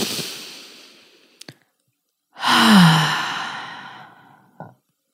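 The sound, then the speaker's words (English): A long, airy inhale, a short pause, then a louder, deep exhale that fades out like a sigh, with no talking. “Take a deep breath. Let's all do that right now.”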